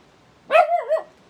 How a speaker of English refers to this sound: I really need the dog to stop barking. It's like, if you know when you got a headache and someone's banging a drum next to your ear? Yeah, that's kind of what it feels like.